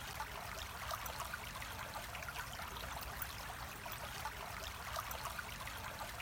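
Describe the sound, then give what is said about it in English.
A steady stream of water flows downstream and burbles continuously, with a broad, even hiss and soft gurgling detail, constant throughout with no voices. “With each sound, the water moving downstream.”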